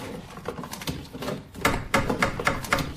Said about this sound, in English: Oh, what idiots knocking on the door when I've got me head in a cupboard. Yes, I'm coming.